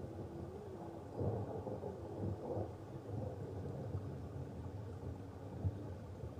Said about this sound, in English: Hear the running water, the thunder above.